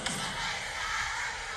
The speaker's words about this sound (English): There you see, like, wait till you hear the crowd here.